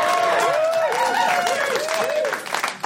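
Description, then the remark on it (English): A sold-out live audience at a festival show applauds and cheers continuously, dense clapping layered with rising and falling whoops and shouts, loud throughout before tapering slightly at the end. “Wow, sold out crowd, right guys?”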